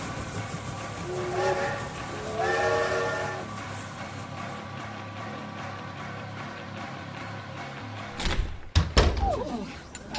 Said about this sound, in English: Right. Moving train.